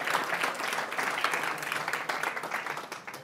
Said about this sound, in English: thank you to the 40 Farmlinkers in the crowd who started that standing ovation.